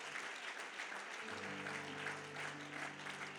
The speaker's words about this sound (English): Clap your hands again.